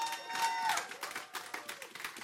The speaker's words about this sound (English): So if you're ready to hear the word of the Lord, would you stand and put your hands together? Let's cheer on as we're going to read some scripture today.